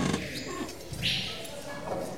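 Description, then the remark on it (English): Roaring, growling sounds like wild animals at a zoo, a steady loud rumbling wash with a brief shrill squeal rising midway through. “That sounds like a zoo.”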